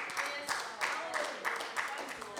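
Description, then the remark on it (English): An audience claps together in praise of God in a steady, fairly quick rhythm, a dense wash of many hands at moderate loudness, with a faint murmur of voices mixed underneath. “Yeah, give Him a clap.”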